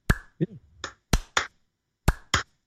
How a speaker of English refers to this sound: So good for him. He gets a slow clap.